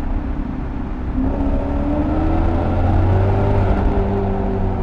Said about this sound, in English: So we'll slow down, and we'll do a quick sound check of the car just to see what it sounds like. So it's the first time putting it in sport mode since we started the episode.